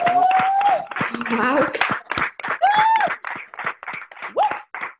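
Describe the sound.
Scattered clapping from several people, uneven and a bit muffled as if coming through different microphones, mixed with voices calling out and a rising whoop or two.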